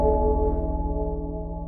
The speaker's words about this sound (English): and maybe if we were to ring a spoiler bell, that's probably around when we would ring it, I guess. Yeah, let's ring it. Let's ring it.